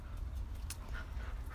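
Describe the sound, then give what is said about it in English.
A dog named Kona pants softly and steadily, quick rhythmic breaths over a low background rumble, with no one talking. “Here's Kona breathing.”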